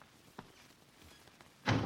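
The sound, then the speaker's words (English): A door opens abruptly at the end with a loud burst of rattling noise, after a near-silent stretch broken by a couple of soft knocks. No one speaks. “tiptoe to the door. See if she's there.”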